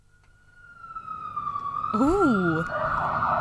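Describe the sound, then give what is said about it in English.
A police siren at the opening of a TV theme tune holds a steady, high wailing tone that gradually grows louder, and partway through a person briefly exclaims over it before the siren continues. “Sirens.”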